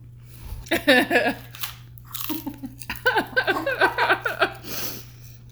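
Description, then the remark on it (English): Loud crunching of a crisp rice cake being bitten and chewed, with bursts of brittle cracking in irregular clusters and brief pauses between bites, plus a steady low hum underneath. “I'm eating relatively loud crunchy rice cakes.”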